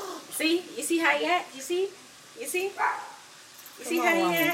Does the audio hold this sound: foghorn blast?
no